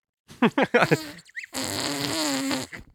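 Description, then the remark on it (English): A few short voiced bursts, then a long, buzzy, sustained fart noise made by blowing into cupped hands over the mouth: a fairly loud imitation lasting over a second. “This one's place hands over mouth, make fart noise.”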